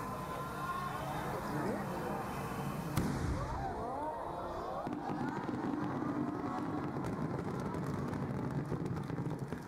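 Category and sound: sound effect, big firework exploding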